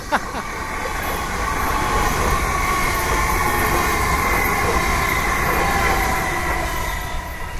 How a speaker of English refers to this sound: And I knew as soon as I thought I'll say this, a train to go rolling by.